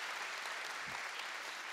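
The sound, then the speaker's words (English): Steady audience applause, a dense wash of many hands clapping at a fairly even level throughout, with no voices standing out above it. “You can clap for that, absolutely.”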